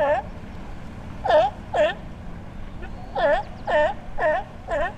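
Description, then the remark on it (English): Sea lions barking from an island about 2 miles away in California: six short, raspy, wavering calls, a pair followed by a steady run of four, standing out over a constant low rumble. “While vacationing in California, NPR's Chad Campbell could hear sea lions barking from an island about 2 miles from his house.”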